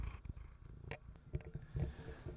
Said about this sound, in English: That was my little cat.